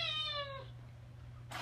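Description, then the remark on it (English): A single drawn-out cat meow, clear, lasting about half a second over a steady low hum, followed by quiet and a brief noisy rustle at the very end. “So you have a horse and a cat.”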